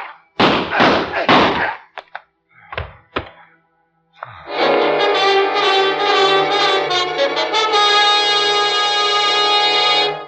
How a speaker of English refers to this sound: The giant stopped as the bolt of the door was pulled back, and then he turned.